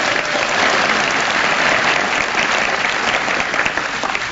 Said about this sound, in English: Let's pretend I started this speech with a story. So give me short applause and I'll start again.